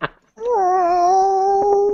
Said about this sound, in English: Oh, the cat. I have 4. You're going to hear them meowing on occasion.